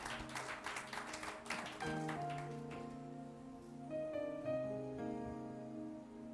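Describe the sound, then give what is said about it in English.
An audience claps for a woman who has just spoken, in a brief burst of applause over the first couple of seconds, while sustained keyboard chords play underneath and carry on alone after the clapping fades. “Can we just clap for her, please?”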